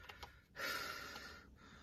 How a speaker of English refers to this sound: Breathing heavy over here. I don't even know how I'm still breathing, to be honest with you.